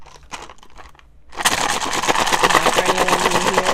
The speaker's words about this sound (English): we roll dice because we are obsessed with various forms of games.